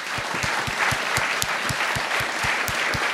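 A crowd applauds steadily, many hands clapping in a dense, even patter with a few sharper individual claps standing out, sustained at a fairly loud level with no talking.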